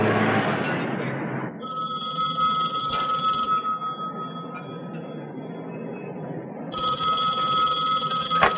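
A telephone rings insistently, its bright bell tone sustained over a low background rumble after a short burst of noise at the start; no one speaks.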